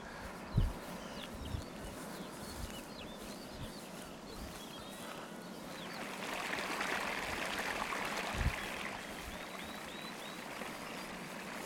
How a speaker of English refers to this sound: So here we are, this is base camp for our work on Gordale Beck. We've walked up the stream and hopefully you've seen the sort of full range of conditions that the water's flowing in.